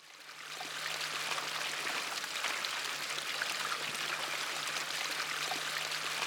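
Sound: flowing river water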